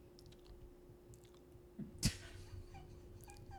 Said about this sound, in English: Take a big sip. Swirl it around like a wine.